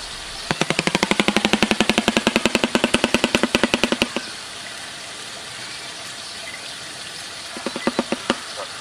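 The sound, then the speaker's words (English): Shoebill noises: a loud, rapid machine-gun-like clatter of sharp knocks for about four seconds, a pause, then a shorter burst of the same rattling. No voices. “So I'm going to include some of those noises here.”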